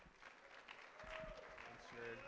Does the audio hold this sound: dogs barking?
no